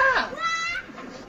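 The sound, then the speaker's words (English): A single short goat bleat sound effect, a high nasal cry with a shaky, wavering middle, fairly loud before it trails off into faint background noise. “I'm slowly I'm redoing my I'm getting all my animal sound effects back”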